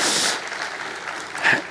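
An audience applauds, many hands clapping in a dense, steady patter that starts strong, settles slightly, then swells briefly again near the end. No one speaks.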